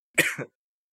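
A single short, rough cough, a harsh burst with a brief second push, followed by silence.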